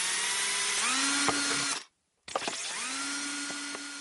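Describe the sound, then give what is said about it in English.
A power drill whines loudly as it bores holes through a plastic lemonade bottle, its pitch rising as it spins up, then cuts out briefly before a second burst of drilling with rattling clicks. “So here we go with the first hole.”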